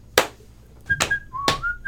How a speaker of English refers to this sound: That goddamned whistle. That same whistle tune just over and over again. Just infinitely.